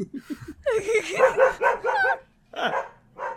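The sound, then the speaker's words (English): A dog barks in a quick, loud run of yelping barks, pauses briefly, then lets out a couple more sharp barks. “Dog doesn't like suicide?”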